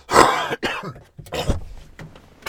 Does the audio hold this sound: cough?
yes